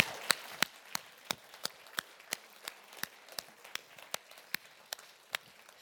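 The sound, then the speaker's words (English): Steady, evenly spaced hand claps ring out about three per second, sharp and crisp, over a soft continuous wash of scattered clapping, with no voices. “Can we just give Naomi a big round of applause?”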